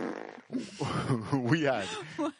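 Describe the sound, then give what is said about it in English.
A wet, juicy fart noise imitated by a voice, a sputtering, wobbling blurt lasting a couple of seconds, moderately loud, with a short vocal burst at the end. “You like the new fart? It's a little juicier this time, right?”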